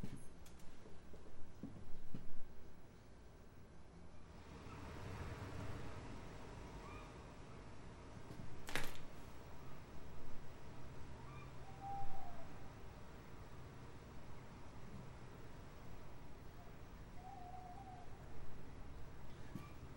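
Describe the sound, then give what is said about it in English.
Quiet winter woodland ambience with a soft, diffuse wash of air and faint rustling, while a very distant owl hoots now and then, barely rising above the background. “It's just the ambience of a winter woodland, a winter forest, with a very distant owl singing.”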